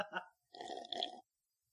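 A quick sip followed by a longer, wet, hissing slurp of coffee lasting under a second, fairly quiet, then silence. No one speaks.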